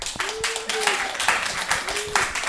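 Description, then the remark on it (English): An audience claps steadily to vote for the '2D body' option, a dense, continuous patter with a few rising vocal whoops or cheers riding on top of the applause. “Round of applause for 2D body.”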